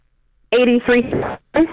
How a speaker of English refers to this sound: Are you somewhere where you can walk and get a better signal, maybe? Because we're losing you about every third word.